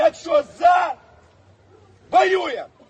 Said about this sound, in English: And the whole crowd there, that, you know, everybody who gathered on the square just shouts back, of course we fight, we fight.